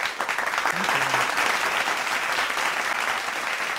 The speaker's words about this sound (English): You can talk over the clapping. There's more people in that audience than any of my stand-up sets.